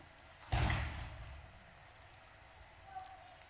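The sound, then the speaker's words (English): A single loud, heavy bang of a man banging on a door rings out and fades over about a second, followed by quiet room noise and a faint small tap near the end. “back there banging on the door”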